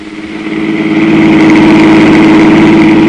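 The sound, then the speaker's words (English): A car engine runs while driving on Summit Street, a business street leading to the river tunnel. It makes a steady, loud low drone and a buzzing mid-range hum, swelling slightly in the first second before holding constant. No voices are heard. “Police Sergeant Klusky and I were driving on Summit Street, which is a business street leading to the river tunnel just below Summit Heights”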